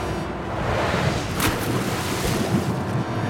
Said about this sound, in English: It landed with a splash and sunk like a stone.